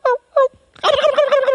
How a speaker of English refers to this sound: So I call a couple more times. Can you hit that gobble again when it's the right moment?